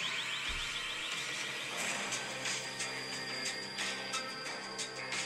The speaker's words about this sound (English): Well, some idiot set off the alarm, and it wasn't me. This can't be good.